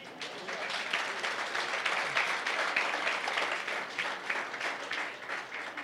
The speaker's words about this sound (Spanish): Eso merece un aplauso.